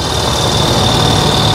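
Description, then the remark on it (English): A motorcycle with a sidecar idles, a loud, steady rumble with a thin high whine running through it, unbroken for the whole moment and with no voices. “It's a motorcycle with a sidecar.”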